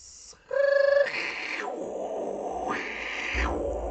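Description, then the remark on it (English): A dial-up modem handshake: a short steady electronic tone gives way to loud, harsh screeching hiss that shifts and cuts between bands in bursts. No one speaks over it. “It's doing a fucking modem sound.”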